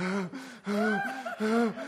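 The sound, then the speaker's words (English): A voice imitates heavy breathing: three loud, voiced gasping pants in a steady rhythm, each breath strained and drawn out, with no words spoken. “Breathing hard.”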